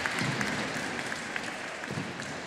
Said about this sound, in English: She's up. It's a nice round of applause from the crowd here. Conti Forum.